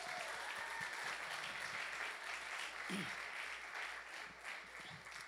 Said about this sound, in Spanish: Y cuando usted lo oiga, déle un fuerte aplauso cuando menciones estos nombres.